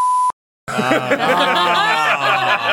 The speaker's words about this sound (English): You can say in the room, but I'll beep it out.